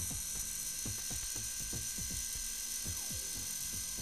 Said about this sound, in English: What it's now doing is printing out a nice little photo taken on my mobile phone on this little pocket portable rechargeable printer.